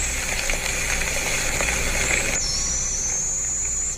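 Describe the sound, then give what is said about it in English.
A young barred owl, recorded in Mount Airy, Maryland, gives a thin, very high-pitched hissing screech that swells and holds steady through the second half, over a constant rushing background noise. No one speaks. “Young barred owl.”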